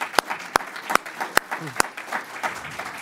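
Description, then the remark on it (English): An audience applauds after a talk in a steady patter of many hands, with a few sharp, louder claps standing out at irregular moments over the continuous wash of clapping. “All right, now we can clap.”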